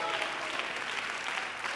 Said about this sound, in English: If you believe that, clap your hands to the Lord and give him great praise.